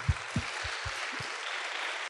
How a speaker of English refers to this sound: This is the first poetry slam any of our primary contestants have actually been in. It's a very scary, kind of nerving thing, so let's give them one big, massive round of applause.